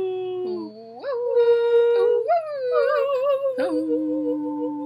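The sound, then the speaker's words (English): Girls imitate wolves, howling long wavering cries that swoop up and slide down in pitch, overlapping one another loudly for several seconds without a break. “I love being wolf girls.”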